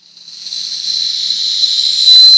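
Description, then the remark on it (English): A crucifix-shaped rape whistle is blown in one long, steady, shrill blast lasting a couple of seconds. It starts softly and grows louder, with a slight breathy hiss and no voices. “Did you just Jesus whistle?”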